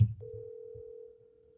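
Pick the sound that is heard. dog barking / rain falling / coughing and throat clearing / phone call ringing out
phone call ringing out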